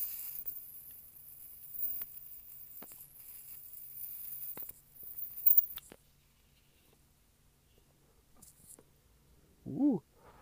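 An electric lighter lighting a joint: a thin, high-pitched sizzling hiss runs for several seconds with faint ticks and crackles, then stops; a short voiced exclamation comes near the end.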